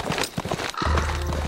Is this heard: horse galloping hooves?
yes